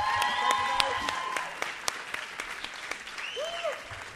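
An audience claps in a steady round of applause that lasts the whole stretch, dense overlapping claps at moderate volume, with a few whistles and cheers rising above it.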